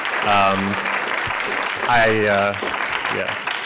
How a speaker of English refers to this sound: And then finally, a round of applause for our panelists who absolutely crushed it.